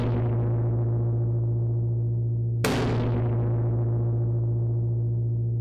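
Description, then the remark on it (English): Two heavy strikes on a cola bottle, recorded dry with distortion added, booming like a drum tom, each ringing out in a long, dense decay. The hits are loud and about two and a half seconds apart. “Added again a bit of distortion.”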